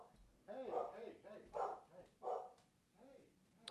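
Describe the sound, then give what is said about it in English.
Dogs bark excitedly in a quick series of about four sharp, yelping bursts, spaced roughly evenly, with a faint murmur underneath. “My dogs are going nuts.”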